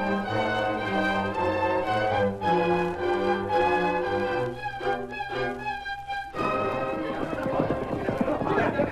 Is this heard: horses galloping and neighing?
yes